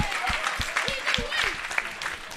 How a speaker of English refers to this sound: All right, round of applause for everyone that said waste.